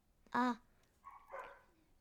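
A single sharp dog bark rings out, followed a second later by a softer, whining yelp; there is no talking.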